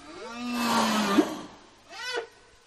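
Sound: whale calls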